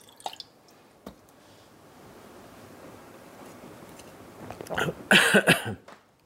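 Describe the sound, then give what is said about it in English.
Someone sips water, with a few faint clicks early on, then wet slurping and swallowing noises that swell louder near the end. No one speaks. “Excuse me, I just gonna take a little bit of water.”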